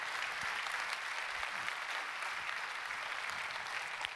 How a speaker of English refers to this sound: And we need to take a moment, I don't know who the person is, let's applaud and thank them for their work, whoever they are.